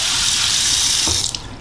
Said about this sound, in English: So I'm putting some hot water on my offset.